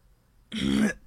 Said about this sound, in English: Sorry, cough. Had to wait for it to come out.